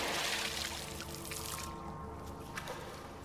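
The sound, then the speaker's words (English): Water splashes and pours steadily as a creature with scales, fins and gills rises up out of the water, a bright rushing wash for the first half that settles into a lower, churning trickle with a few scattered drips near the end. “It's a kind of a deep blue glowing seaweed that's draped over them, is rising up out of the water.”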